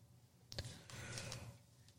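A single drawn-out yawn, a breathy rush of air that swells and fades over about a second and a half, fairly quiet with no talking.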